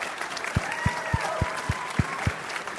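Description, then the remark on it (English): An audience applauds baseball player Royce Lewis, with a steady wash of clapping and a run of evenly spaced, heavy low thumps, about three per second, sounding like rhythmic claps or stomps. No one speaks. “Another round of applause for Royce.”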